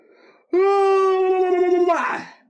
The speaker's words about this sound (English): That's where you're yawning. Wait, you thought that's how I yawn?